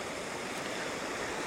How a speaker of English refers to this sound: Well, the water is running quite strong today.